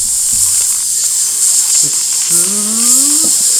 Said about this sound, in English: I'm sorry, you forgot to turn off the grill? Oh, fuck. You're fucking right. Oh, I can hear it.